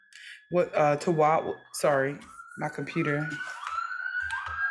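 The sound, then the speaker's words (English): An ambulance siren wails steadily, its pitch slowly rising, while people talk over it. “I feel like there's, like, ambulances coming from all different directions.”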